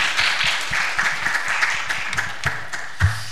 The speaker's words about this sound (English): And when he comes on stage, please welcome him with an applause.